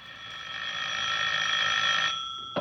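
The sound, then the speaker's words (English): A telephone bell rings in one sustained, bright metallic trill for about two seconds, then cuts off abruptly, followed by a brief clunk at the very end. It is a phone ringing in a flat in a new block behind Portland Place, England, around 10 o'clock at night. “As I came up the stairs, I heard my phone ringing.”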